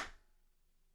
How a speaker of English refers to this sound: You see, a clap is a lot of force. My hands moving forcefully together in a short amount of time, and it makes a sound. It makes a noticeable impact.